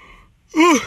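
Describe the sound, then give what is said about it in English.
A single loud yawn from a person sitting in a car: a voiced, breathy sound that swells up and arches in pitch, coming right after a short lull of quiet. “My goodness, I am so sorry. I yawned like a mug right now.”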